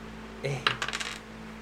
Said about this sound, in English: roll a D4. Where the hell's my D4?